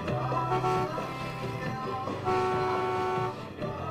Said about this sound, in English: So when they get to the club, someone outside is beeping their car horn.